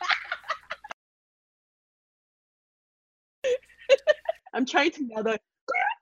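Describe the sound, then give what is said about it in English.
A person imitates a pigeon with their voice, making choppy cooing and clucking noises in two clear bursts separated by a few seconds of silence. “I'm trying to nail that pigeon.”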